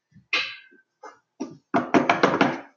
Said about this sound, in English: Knock on wood that I never do. Definitely not wood.